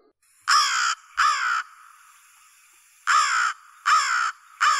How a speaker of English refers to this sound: Second is their less than melodious call. They make a mournful croak or an elongated caw.